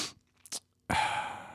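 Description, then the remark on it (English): A short breathy puff and a brief second one, followed by a longer, loud, airy nasal sniff or snort lasting most of a second, with no talking. “Even give you sincerity snort or sniff.”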